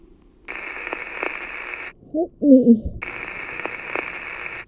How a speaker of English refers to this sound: This was raw static recorded when I kept the line open the final time when the house called.